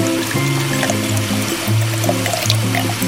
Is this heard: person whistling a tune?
no